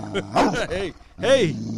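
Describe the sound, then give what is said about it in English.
A dog barks loudly, two harsh, growling bursts with a short pause between them. “And let me give you, man, get your dog, man. Get your dog, man.”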